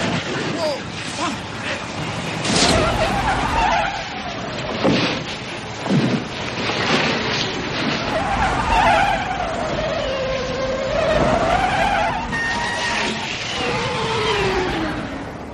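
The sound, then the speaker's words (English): A loud, chaotic highway car chase in a movie, involving a tractor trailer: engines roar steadily while tires squeal in long wavering whines, punctuated by sharp crashes and bangs, with indistinct voices mixed into the din. “I think for me, one of the memorable scenes in the movie has to be the highway chase scene.”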